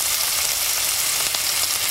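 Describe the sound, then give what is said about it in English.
Steady sizzling and crackling of a placenta frying in a hot oiled pan, a dense hiss with scattered pops running continuously, no voices. “It is so strange to see a part of yourself slapped into an oil-covered sizzling pan like a piece of bacon.”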